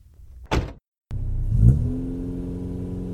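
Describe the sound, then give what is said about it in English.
A car door thuds shut, then after a brief pause the engine turns over, revs up loudly and settles into a steady droning hum as the car pulls away. “Just get in the damn car.”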